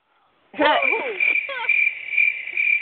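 A steady, high-pitched cricket trill starts abruptly and continues without pause, fairly loud, with a few brief warbling, voice-like sounds over its first second.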